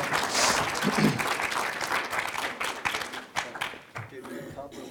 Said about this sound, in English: Thank you. We have a round of applause. Great job, everybody.